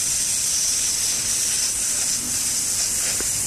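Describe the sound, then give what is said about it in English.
A long, steady hiss of aftershave spraying from a can, bright and airy, holding at an even loudness for several seconds with no voices over it. “No one does that anymore, do they? Splash it all over. No one does that. You spray.”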